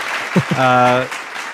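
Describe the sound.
Recorded applause, a steady wash of clapping across the whole moment, with a brief sustained voice rising over it in the middle.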